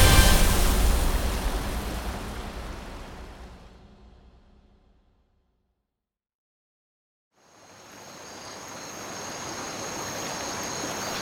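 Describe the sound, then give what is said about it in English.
Loud, steady rush of a fast-flowing river with a strong current fills the opening seconds, fades away into a few seconds of complete silence, then swells back as a slightly softer churning roar. “Oh no, the current is so strong.”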